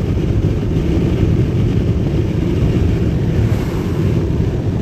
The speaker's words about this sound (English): God, it's windy. Holy crap, it's windy.